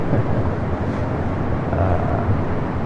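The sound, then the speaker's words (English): A subway train for Kurama arriving at platform 1 rumbles steadily with a deep, continuous roar and a broad wash of mechanical noise. It stays fairly loud throughout, with no voices. “That's the sound for the train that you hear. It's the arrival train.”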